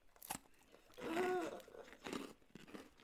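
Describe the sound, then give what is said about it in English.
Crisp crunching from someone biting and chewing a crunchy bar of golden honeycomb wrapped in Cadbury milk chocolate, several brittle bursts over a few seconds, with a short voiced murmur in the middle. “Golden honeycomb wrapped in Cadbury milk chocolate. Ooh, motherfucker. That sounds titties. Sorry, baby. He's okay. Ooh, it's crunchy.”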